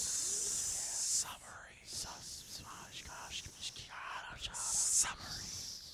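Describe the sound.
A voice makes breathy, hissing whispers imitating a snake speaking Parseltongue, with two strong hisses at the start and end and softer sibilant murmurs between them.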